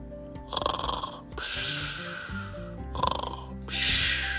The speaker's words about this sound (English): Have you ever heard a dog snore? It's pretty funny.